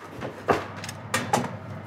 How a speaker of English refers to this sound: Okay, so now I'm gonna pop the chicken in the oven. In she goes.